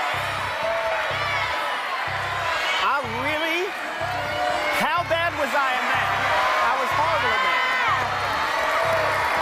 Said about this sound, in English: Oh, they're all yelling literature now.